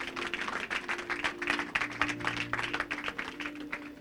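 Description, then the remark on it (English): An audience applauds Jesus steadily for about four seconds, a dense, continuous patter of many hands clapping at once, full, with a faint low sustained tone humming underneath. “Let's give Jesus a big round of applause, shall we?”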